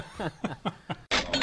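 A few short bursts of chuckling laughter lead into a sudden bright, ringing cash register ching sound effect, fairly loud. It is played on mention of the 2CR5 camera battery.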